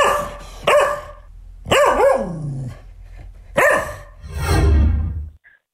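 A single dog barks in loud bursts, about four or five sharp barks spaced irregularly, with a rougher, growly final bark before the sound cuts off.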